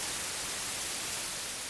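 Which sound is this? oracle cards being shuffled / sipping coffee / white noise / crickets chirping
white noise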